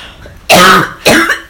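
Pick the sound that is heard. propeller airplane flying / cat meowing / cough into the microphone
cough into the microphone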